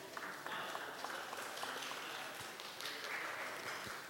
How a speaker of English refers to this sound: You did. Stand up. We want to applaud you.